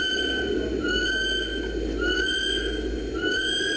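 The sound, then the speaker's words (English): A kiwi calls with a series of shrill, rising whistled notes repeated in quick succession, each sliding upward in pitch, over a steady low background rumble. “That's a Kiwi.”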